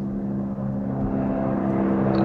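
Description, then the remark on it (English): A helicopter flying, a film sound effect: a loud, steady engine drone with a rapid, rhythmic rotor thumping underneath, holding constant throughout with no voices. “That would be the airplane that's at the beginning of John Carpenter's The Thing.”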